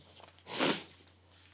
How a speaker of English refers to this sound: sorry, I've got a sniffle.